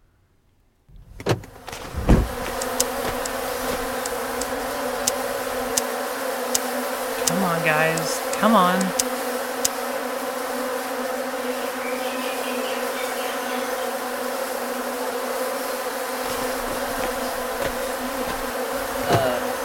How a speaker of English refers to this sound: Drive, Taylor, unless you want your car to get covered in bees.